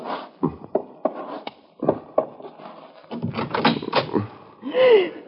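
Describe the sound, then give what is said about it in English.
A door being unlatched and opened as someone answers it: a series of sharp wooden knocks and rattles from the lock, shuffling movement, then a short creak as it swings open. “There was someone at the door. Don't move. I will answer it.”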